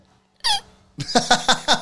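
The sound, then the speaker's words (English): One sharp, voiced hiccup pops out after a moment of quiet, followed by a quick run of rhythmic, breathy vocal bursts. “Are hiccups the worst or what?”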